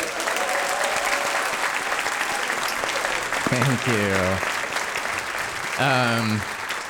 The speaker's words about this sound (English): Tonight, however, we are only giving gifts of the spirit. So, and the applause of the audience.